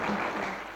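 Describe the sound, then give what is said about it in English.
A burst of audience applause, many hands clapping together in a dense, steady patter at moderate volume, with no voices standing out. “Give her another clap.”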